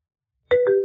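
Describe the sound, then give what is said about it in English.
After a moment of silence, a phone ringtone abruptly starts: a loud, steady electronic melody with a sustained tone that shifts pitch slightly, cut off after a fraction of a second. “I've attached my ringtone. Hearing it makes me chuckle every time someone calls me.”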